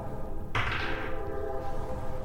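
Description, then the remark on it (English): A train roars past, a sudden burst of rushing noise with a low rumble underneath and a horn-like tone that fades as it goes. No one speaks. “And with that, one heartbeat, two heartbeat, three heartbeats, and the train is there.”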